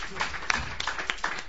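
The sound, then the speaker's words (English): A short burst of scattered hand claps from a small audience, sharp irregular pops over a noisy wash, moderately loud. “I had the honor of presenting him last year at the Edmonton Folk Music Festival, where he, out of all the performers there, was one of three to be selected for the Galaxy Rising Star Award, and that in itself deserves a round of applause.”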